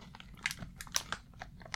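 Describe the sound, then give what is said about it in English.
Crisp crunching of someone biting and chewing Swift chocolate-covered pretzels from Poland, with a rapid, irregular series of sharp cracks and crackles and no talking. “Yes, these are foreign chocolate-covered pretzels.”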